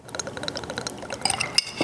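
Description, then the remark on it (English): Whiskey pours into a glass for tasting in a steady trickle for a couple of seconds, with a few bright glassy clinks near the end. No one speaks. “Okay, should we do whiskey first?”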